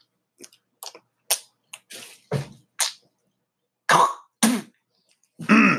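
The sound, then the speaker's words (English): A man with too much chewing tobacco in his mouth hawks and clears his throat repeatedly in short, wet, gravelly bursts, with clicking mouth noises and brief pauses between them, ending in a louder rough hack. “I didn't mean to sound rude like that, but I just had a little too much chew in my mouth.”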